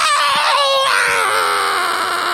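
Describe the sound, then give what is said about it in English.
A mother imitates her toddler son's wailing scream as he refuses to get in the car, a loud, sustained high-pitched cry with a wavering pitch, continuous for a couple of seconds. “Like, he was totally fine, and then all of a sudden, he's like a dead fish. And he's just screaming.”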